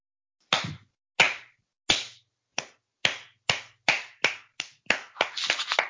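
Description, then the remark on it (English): Sharp hand claps ring out alone, starting slow and spaced, then quickening into a faster, denser burst of clapping toward the end. No one speaks. “That was, I can't do anything but clap.”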